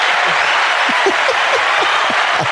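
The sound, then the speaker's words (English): A canned applause sound effect played from an applause button: dense, steady clapping and light cheering from a crowd, loud and continuous throughout with no speech over it. “Where's our applause button? Our applause button. Yeah. Here it is.”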